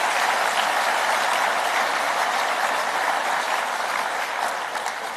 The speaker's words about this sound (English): I'd like to thank all the sponsors for making this possible, and you know who you are. Let's clap hands one more time for the sponsors.